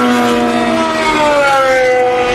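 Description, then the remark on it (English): Loud, high-revving engines of three GTE Pro-Am race cars at Le Mans roar continuously, their pitch gliding slightly downward as the cars sweep past. No one speaks. “Three GTE Pro-Am cars there.”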